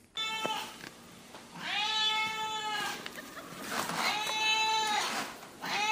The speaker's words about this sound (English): That's Kaylee the cat. We've had Kaylee the cat for 14 years. I've heard this sound actually every morning for 14 years.